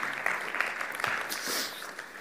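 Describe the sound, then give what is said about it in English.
An audience claps steadily throughout, a dense, even wash of many hands applauding at moderate volume with no voices standing out. “Will you give these people a round of applause?”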